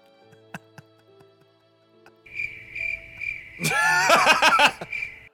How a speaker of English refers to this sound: Bruh. That's a good time for the crickets.